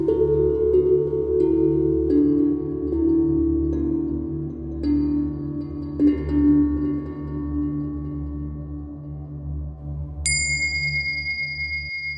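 Whale songs: low, sustained moaning tones with shifting pitch drone steadily throughout, and near the end a bright, high ringing tone suddenly rises above them. No voices.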